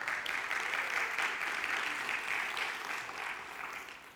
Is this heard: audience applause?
yes